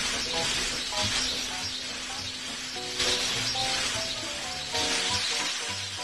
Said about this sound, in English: Or is that not rain? I thought that was rain. It is?